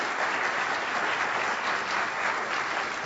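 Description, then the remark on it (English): Steady, loud audience applause after a speaker finishes a talk about Lincoln, a dense wash of many hands clapping at an even level throughout with no voices standing out. “I'm lingering not to milk the applause, which was very nice”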